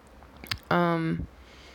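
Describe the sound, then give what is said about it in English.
A short slurping sip of coffee, followed by a satisfied hummed "mmm" from the drinker. “So post shower, I am sipping my coffee and recording this. So pardon the sips.”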